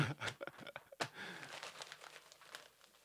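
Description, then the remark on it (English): Crackly paper noise: a hand gives a few sharp slaps or strikes to the paper, followed by ripping and crinkling that continues unevenly for about three seconds, with no talking. “No, I did my hand, but I was trying to make a ball noise.”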